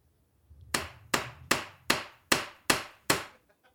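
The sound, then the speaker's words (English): Seven sharp, ringing strikes of a hammer on a chisel as a kitten is carved into stone. The strikes are evenly paced about twice a second, each a bright crack that fades quickly, with no talking. “No, but I can carve one cute fucking kitten.”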